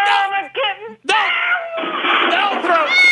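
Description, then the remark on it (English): A high, strained yowling cry, loud, rising and breaking into several drawn-out wails over a few seconds, apparently a voice imitating a kitten as it is thrown. “Here goes the kitten.”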